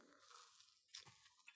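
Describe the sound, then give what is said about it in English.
A quiet bite into a crusty bagel with cream cheese, followed by a short burst of crunchy chewing with a couple of sharper crackles, and no talking. “The difference is the crust on this, right? There's chew. There's no mistaking this for bread.”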